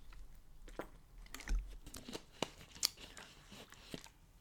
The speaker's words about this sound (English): Maybe if I take a sip of water.